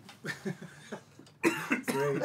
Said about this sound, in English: Cough at the fucking microphone, man.